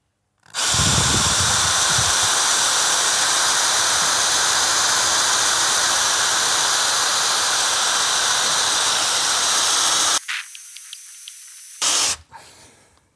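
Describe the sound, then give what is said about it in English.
A drill bores by hand into steel, without special tools, pressed in mainly with body weight, with a loud, steady grinding whine for about ten seconds, then thins to a high, quieter hiss before a short final burst and silence. “How to drill steel without any special tools”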